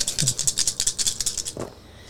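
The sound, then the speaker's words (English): Dice clatter rapidly inside a small hard dice roller, a quick run of bright clicks and rattles for well over a second before a brief thud and a trailing tap. “Let me get my little dice thing.”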